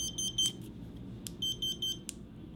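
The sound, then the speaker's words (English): A Smoant Robox vape mod shaped like an open hard drive gives off a rapid run of short, high-pitched beeps in uneven bursts, moderately loud over a low background rumble, with no one speaking; the beeping signals that no atomizer is attached. “It beeps. Okay, that means there's no atomizer attached.”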